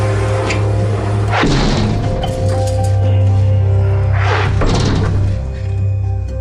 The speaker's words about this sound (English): A 25-ton steel door swings shut. In the event of a nuclear attack on Washington, D.C., some 400 kilometers away, members of Congress would be locked safely inside, with enough generator power, food, water in beds to last weeks.